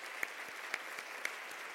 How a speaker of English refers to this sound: Of course, there are many more, but I'd like a round of applause for all of their help in making this happen.